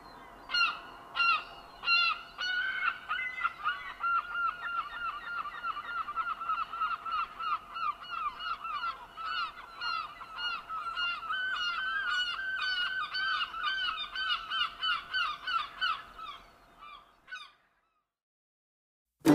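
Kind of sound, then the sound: bird, gull calls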